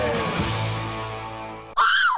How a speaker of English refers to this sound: Just give me the scream again.